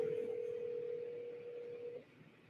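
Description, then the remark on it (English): A steady telephone tone hums for about two seconds as a cold call is placed, then cuts off abruptly, clear and fairly loud over faint background noise, with no one talking. “So it's like you're picking up the phone, calling random people.”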